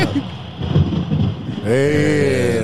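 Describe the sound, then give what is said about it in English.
A thunder sound effect: a loud, rumbling crackle rolls for over a second, then gives way to a sustained, ringing tonal sound that carries to the end. “Professor Thunder is bringing the knowledge.”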